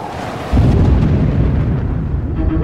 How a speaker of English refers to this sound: the empty stretch of sea seemed desolate, despite the cacophony of the thunderstorm that rained into the ocean. 30-foot waves smashed into each other with dizzying force as shrieking winds ripped any trace of warmth from the air.